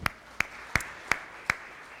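Applause in response to a request, though only sparse: five sharp, evenly spaced claps about a third of a second apart, moderately loud, with no talking over them.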